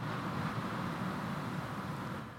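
Rain pattering on a garage roof in Australia in a steady, dense patter, a continuous soft hiss of countless small drops with no voices and no break in the rhythm.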